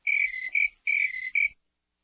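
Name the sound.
crickets chirping sound effect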